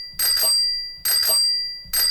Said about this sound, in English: Is that a cash register or like a trolley coming into town? It's a bike bell.